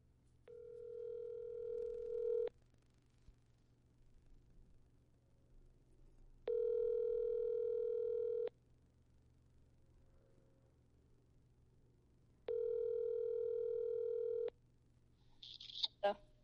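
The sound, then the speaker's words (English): An outgoing phone call to a friend: the ringback tone sounds three times, each steady buzzing ring lasting about two seconds with long pauses between, followed by a brief clatter as the line seems to pick up. “Whose phone's gonna ring? All right, but no, I'm getting ready to call one of my friends.”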